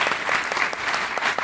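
An audience claps steadily, a dense wash of many overlapping hand claps at an even, moderate loudness with no voices standing out.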